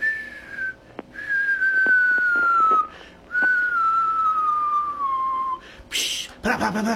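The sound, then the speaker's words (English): Someone whistles in imitation of a New Year's firework, three long gliding tones that slowly fall in pitch, followed by a brief breathy hiss like a burst, fairly loud. “And then Happy New Year, then the bugger just go shh. Yeah, you know, and they get the whistle.”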